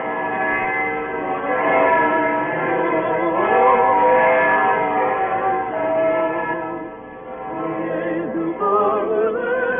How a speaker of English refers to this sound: The shops in the Kirchnerstrasse were full of people buying presents for each other, and then hurrying home for dinner in the snow as the evening bells began to ring high up in the Staple Tower.